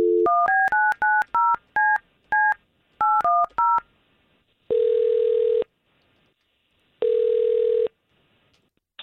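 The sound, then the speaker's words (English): A quick run of about nine telephone keypad beeps dials a number for a call from the K92.3 radio morning show, followed by two long, steady ringing tones separated by a pause of silence, clear with no voices. “We've got Tara's phone number, thanks to you, and let's see if we can't call her, all right?”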